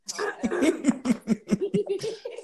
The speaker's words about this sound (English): Clear my throat a little bit.